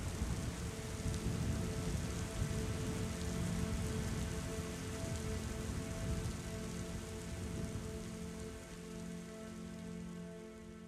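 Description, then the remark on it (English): Steady, dense freezing rain pours down and patters on hard surfaces, a constant wash of drops with a low rumble beneath, no voices, easing slightly toward the end. “before turning her back and walking into the library, leaving her out in the freezing rain, alone.”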